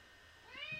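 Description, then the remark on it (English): A single short cat meow rises in pitch near the end, fairly soft, with faint background hiss and no talking. “this fucking cat, like, finds a way to open like heavy doors, and then he just starts meowing and shit.”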